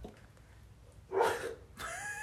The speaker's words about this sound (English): Sorry, guys, that's Theo. The old... the dinger dog. Dinger pup. Barking.